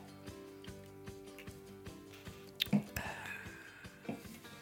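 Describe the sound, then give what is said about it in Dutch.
A quiet sip of beer: a brief wet slurp and swallow, followed by a soft exhale and a clink, against a steady low hum and faint background murmur. “Even een slokje bier.”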